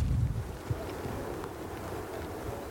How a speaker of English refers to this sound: So you can hear the roar of the ocean now.